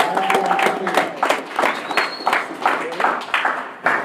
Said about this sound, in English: I'm glad to have everybody here. Clap it up one time for yourself. Yeah.